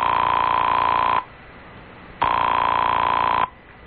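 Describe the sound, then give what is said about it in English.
A telephone rings on the line, heard through the earpiece, on a call made from a doctor's house in Austria: two long, steady, thin-sounding rings separated by a pause of about a second, with no one speaking. “She was also kind enough to let me make a phone call on my credit card.”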